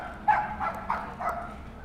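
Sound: small dog yapping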